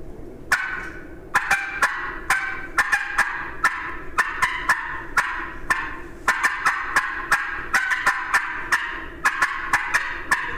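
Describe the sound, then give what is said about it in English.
A hand-operated turkey call imitates a hen: a quick, uneven run of sharp, raspy cutting notes that rise and fall in pitch, fairly loud, with no talking over it. “But most of the time I'll huff it or come from the diaphragm and then I'll get those highs and lows in there that you'll get from a turkey.”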